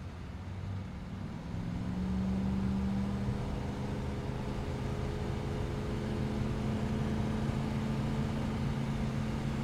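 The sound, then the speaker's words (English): A car engine hums steadily as the vehicle drives along a road and over a hill, a low droning tone rising slightly in pitch as it works harder, with broad road noise underneath throughout. “Over the hill he travels, working the engine, looking to get as far away as he can.”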